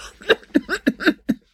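A voiced coughing fit from a woman, rattly from fluid in her lungs: about six hoarse coughs in quick, uneven succession over roughly a second, each a harsh burst, then silence. No one speaks.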